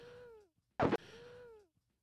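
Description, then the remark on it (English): Wheezing breaths of a person with COVID: two drawn-out, whistling exhalations that slowly fall in pitch, separated by a short, loud, rough gasp of air in the middle. “You hear that? I'm breathing. Is that wheezing. Me? I'm wheezing.”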